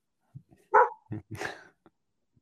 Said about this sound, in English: Whose dog is it? That is not my dog.